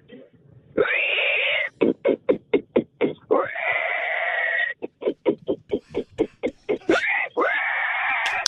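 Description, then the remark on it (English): A person imitates a pig, letting out three long, high-pitched squeals separated by rapid bursts of short, choppy grunting snorts, loud and strained throughout. “I can sound exactly like a pig. I make very authentic pig noises.”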